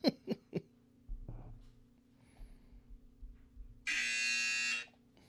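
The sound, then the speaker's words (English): A few quick clicks and some low rumbling, then a loud, harsh buzzer blares steadily for about a second before cutting off abruptly. No one speaks. “So here comes that buzzer.”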